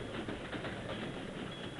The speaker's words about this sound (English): As he struggled with his bonds, the train began to slow down.